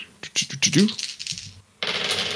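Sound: dice being rolled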